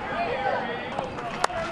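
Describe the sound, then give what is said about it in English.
A small group of fans gathered just outside the locked-down Camden Yards, watching an Orioles–White Sox game through the right field fence, cheers with a steady, muted murmur of voices, broken by a few sparse, sharp claps that sound like polite golf applause. “That cheering you hear, courtesy of WGN, which sounds like a polite golf clap, is coming from a small group of fans gathered just outside the lockdown Camden Yards to watch the game through the right field fence.”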